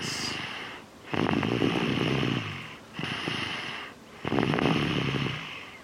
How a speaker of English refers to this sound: That could be anyone snoring. It could be a dog snoring.